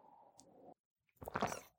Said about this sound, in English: I say as I take a sip of water because my mouth is dry.